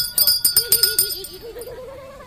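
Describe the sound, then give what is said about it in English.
A small bell rings in a quick, rhythmic flurry of clangs with bright, lingering overtones, then fades as a wavering animal bleat rises. “Oh, you love that bell.”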